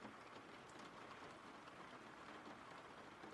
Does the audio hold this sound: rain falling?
yes